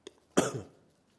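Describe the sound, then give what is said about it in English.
A single sharp cough bursts out after a tiny preceding throat sound, then fades quickly into quiet. No talking. “You may get a few coughs today, guys.”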